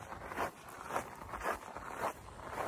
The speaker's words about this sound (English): This part of the trail is gravel, which I'm sure you can hear the crunching gravel.